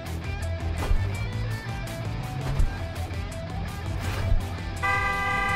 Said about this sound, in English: Honk, I heard you.